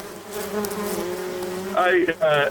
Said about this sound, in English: I'm giving you these bees, my guy.